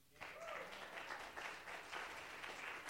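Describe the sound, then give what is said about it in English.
A crowd breaks into sustained applause as a clap offering, dense overlapping claps forming a steady, bright wash of sound that continues without pause, with a few faint voices mixed in beneath. “Can we have a clap offering?”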